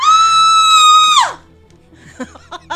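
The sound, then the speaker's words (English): A person trapped inside an iron maiden screams: a loud, shrill scream holds one high pitch for about a second, then sharply trails downward and cuts off, followed by quieter, faint vocal sounds. “Trapped inside the screaming, Iron Maiden. Screaming like a little baby girl.”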